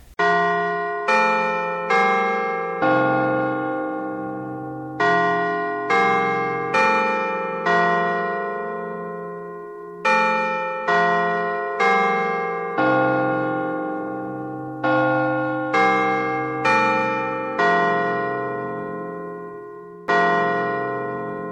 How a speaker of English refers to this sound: Scrooge had no occasion to be told that the bell was again upon the stroke of one